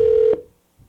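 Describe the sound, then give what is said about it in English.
A steady electronic phone ringback tone sounds loud for a brief moment while calling back a number that goes unanswered, then cuts off abruptly, leaving near silence with a faint low rumble afterward. No one speaks. “Pick up the phone. Pick up.”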